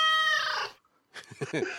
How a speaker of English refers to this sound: What was that? It was a cat.